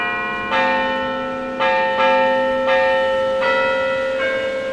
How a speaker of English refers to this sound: Obviously, the sound of church bells. You've probably heard bells that sound a lot like this, and you've probably ignored them.